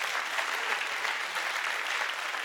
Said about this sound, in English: And I know there are seasons, amen. Hey, we can clap that, amen, amen.